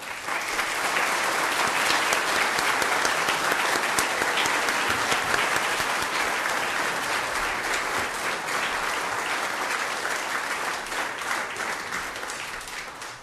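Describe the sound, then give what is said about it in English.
An audience in church applauds warmly for children who have just received their first Holy Communion at Mass, a dense, steady wash of many hands clapping that holds at an even level for over ten seconds before tapering slightly at the end. “Give the children another wee round of applause too.”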